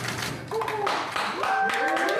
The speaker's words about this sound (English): The click of cameras and applause as the first COVID-19 vaccines were administered.